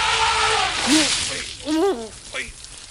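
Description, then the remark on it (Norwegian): A loud hissing gush of water sprayed from an elephant's trunk splashes down over a barbecue grill, with a few short rising-and-falling vocal whoops over it, like a voice mimicking an elephant's trumpet. “Snabelen setter I et trompetbrøl og spyler ned både grillen og Tio og Tullerusken.”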